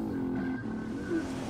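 A car engine hums loudly and steadily, its tone rising slightly as it accelerates near the end, with no voices over it.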